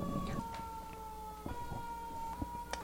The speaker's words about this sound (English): Ironic that we're going to have a fire engine in the background here in a second.